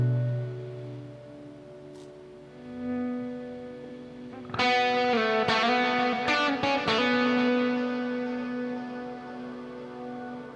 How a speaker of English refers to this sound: My headphones haven't distorted, the goopy echo sound hasn't distorted.